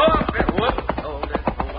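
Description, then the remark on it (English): Hooves of a galloping horse carrying an approaching rider who is riding hard clatter in a quick, steady rhythm of sharp knocks over a low rumble, with no voices. “Oh, hey, here comes a rider, Sunshine. Yeah, and he's really riding.”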